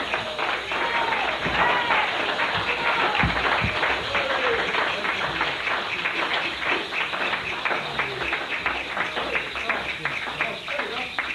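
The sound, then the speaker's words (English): An audience claps steadily for about eleven seconds for visiting brothers and sisters from Norwich called onto the platform, a dense, crackling wash of many hands at an even loudness, with a murmur of voices underneath. “Give them a clap, all of them.”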